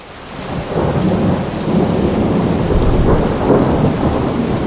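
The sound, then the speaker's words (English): A thunderstorm with heavy rain pouring down on dry desert earth, a dense steady roar of downpour with low rumbling thunder swelling underneath, loud throughout, no voices. “The day after the Chevre and Moshav Komemiyut finally planted their 1,000 dunam of wheat fields with that wormy, rotten seed, the skies opened up and the rains exploded and poured down on the dry desert earth.”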